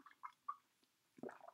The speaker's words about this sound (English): I'm just going to take a sip of my drink.